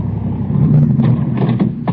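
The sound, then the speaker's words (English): A car engine idles after pulling to a stop around the first bend in a road, with a steady, low rumbling hum that holds constant throughout, with a few faint clicks and rattles over the drone and no voices. “I pull to a stop around the first bend in the road.”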